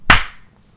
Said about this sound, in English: Want to do a clap? Yeah. 3, 2, 1.